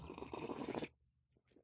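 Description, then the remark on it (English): A wet slurp of a champagne cocktail being drunk at 8 in the morning in Las Vegas, one continuous noisy sip lasting just under a second, followed by a brief faint murmur of voice. “This slurp.”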